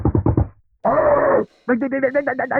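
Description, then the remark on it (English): A voice imitates a UPS delivery driver loudly knocking on a front door like police: four quick, forceful vocal thumps, then a drawn-out vocal tone, then another rapid string of knock-like vocal beats, all loud. “So the UPS dude and the Amazon, and I don't remember who it was today, but I think it was the UPS dude, rings the doorbell and knocks on the door like police.”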